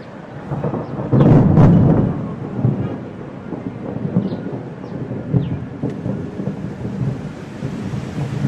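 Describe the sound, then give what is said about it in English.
Steady rain falls in the fertile Ethiopian highlands, hissing throughout, with a deep rumble of thunder swelling early on before the downpour settles into a continuous wash of noise. No voices. “As the rain feeds the rivers in the fertile Ethiopian highlands, famine seems far away.”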